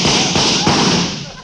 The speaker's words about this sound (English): That was an automobile backfiring.